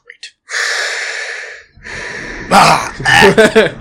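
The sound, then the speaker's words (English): A voice imitates heavy breathing: two long, airy inhale-exhale sounds, then louder, raspier gasping breaths with some voiced strain toward the end. “And you go there, as you go into that room, your room, and try to relax, the sweet sound of breathing helps you to relax and sleep.”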